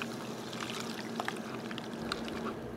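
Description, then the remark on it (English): A steady pour of a cocktail trickles and splashes for a few seconds, a continuous stream running through a fine tea strainer that removes tiny ice shards, with small drips and splatters, no voices. “And then I'm also going to use a tea strainer.”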